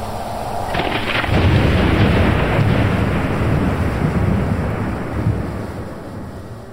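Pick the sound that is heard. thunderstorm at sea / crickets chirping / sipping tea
thunderstorm at sea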